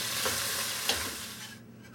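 Ground beef (hamburger meat) frying in a pan, salted and broken up into little chunks, gives off a steady, hissing sizzle with fine crackles, broken once by a brief scrape of stirring before the sizzle eases slightly toward the end.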